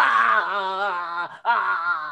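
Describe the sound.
A voice acts out a loud, drawn-out yell of pain, a strained groaning cry held for over a second, cut by a brief gasp, then resumed just as loud.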